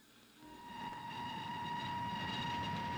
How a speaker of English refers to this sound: This episode takes place on a train. And what better way to establish that than the good old establishing shot of a train with the sound of a train whistle?